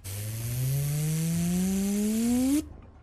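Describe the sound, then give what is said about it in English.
A mechanical whine spins up steadily for about two and a half seconds, its low motor pitch climbing over a loud rushing noise, then cuts off abruptly, like a chain gun barrel winding up. “You hear the barrel of the gun spinning up.”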